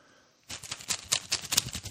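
After a brief hush, a board game's land tiles are shaken in a big drawstring canvas bag: a dense, rattling clatter of many quick, bright clicks in uneven surges, fairly loud, with no voices.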